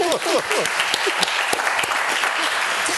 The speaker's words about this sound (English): Unbelievable. Right, you can clap. I know, right?